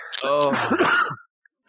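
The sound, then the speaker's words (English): A single loud sneeze: a voiced rising intake that bursts into a noisy, breathy expulsion, then quickly drops into silence. “I think I know that sneeze.”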